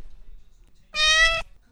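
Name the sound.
cat meowing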